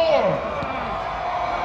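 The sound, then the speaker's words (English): A thin, weak crowd roar from Golden Lion fans at a football game, steady, with a few individual voices briefly rising above the general murmur. “That crowd sounds weak.”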